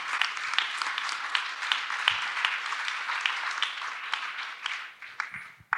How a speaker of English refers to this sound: So give Kemba another round of applause. That took a lot of heart.